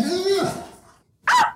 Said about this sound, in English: What is that? The dog barking.